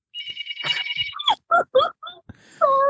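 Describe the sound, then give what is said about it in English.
A hotel room phone gives one short, shrill electronic trilling ring lasting about a second, clear, then someone starts talking right after it stops. “Because surely, oh no, my hotel phone is ringing because the front desk guy is in love with me and asked me out on a date when I checked in.”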